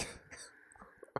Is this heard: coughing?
yes